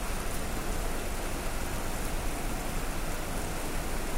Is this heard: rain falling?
yes